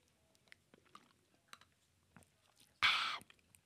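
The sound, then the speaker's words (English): Someone takes a drink: soft scattered sips, wet mouth clicks and swallows, then a short louder breathy burst near the end. Quiet, with no talking. “Hang on, I need a drink.”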